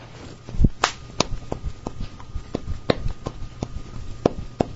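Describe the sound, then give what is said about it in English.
A series of sharp, irregular slaps on skin as a man slaps himself, about a dozen over a few seconds, some crisp and loud, others softer, with no voices. “let's see if we can hear him slap himself around.”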